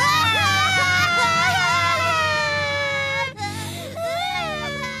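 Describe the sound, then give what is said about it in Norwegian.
Several children whine loudly and continuously, nagging for toys at Christmas, their high voices overlapping in a drawn-out, wavering chorus of complaint that dips briefly before carrying on, insistent. “Ville du at de ungene skulle bli så masete?”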